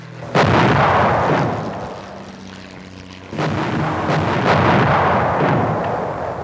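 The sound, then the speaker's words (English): Japanese aircraft bombing during the surprise attack on Pearl Harbor: two heavy booming blasts, each followed by a long roaring rumble, with crackling gunfire and the drone of aircraft engines running underneath throughout. “After 30 minutes of relentless bombing, the Japanese aircraft returned at 8:50 a.m., blasting away again.”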